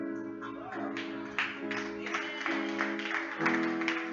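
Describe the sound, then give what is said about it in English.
An audience claps steadily in a dense wash of applause that swells in a few waves over about four seconds, with a low steady hum underneath and no speech. “I'm glad y'all clapping because I was shocked and I did not respond.”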